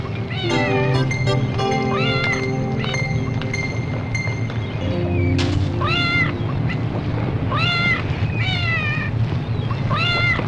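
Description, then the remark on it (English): A cat being held meows over and over in a film scene, the same plaintive cry played about five times in a row, loud against a steady low background hum. “It just holds the cat and just plays the same meow like 5 times.”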